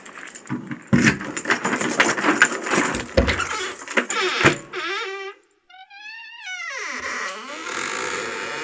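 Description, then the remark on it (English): A bunch of keys jangles and rattles in loud, clustered bursts for several seconds, then gives way to a series of high, wavering whistle-like tones that slide downward. “Talking about actors, actresses, as we do, get your keys out, mate.”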